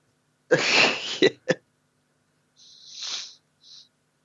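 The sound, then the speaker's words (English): A loud cough bursts out with a couple of short, sharp follow-up hacks, then softer breathy, hissing exhales trail off after a brief pause. No talking. “Oh, did a cough.”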